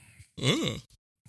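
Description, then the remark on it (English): A single drawn-out yawn, about half a second long, that bends into a low, gruff, growling imitation of Stallone's voice, with the pitch rising and then falling, followed by a couple of short breathy grunts. “I was yawning, and then I turned it into a Stallone voice.”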